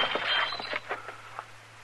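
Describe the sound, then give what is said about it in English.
A glass holding a drink is knocked out of someone's hand: a sudden bright crash and clatter, followed by a few scattered clinks and knocks over a low steady hum, with no voices. “You knocked that glass out of my hand.”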